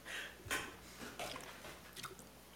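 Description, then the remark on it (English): Quiet, wet chewing of a Crybaby sour candy, with a few sharper crunchy bursts at irregular intervals over a soft, moist mouth sound. No one speaks. “Forgive the silence, but I love crybabies.”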